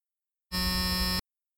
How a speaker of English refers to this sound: Buzzer number 1, again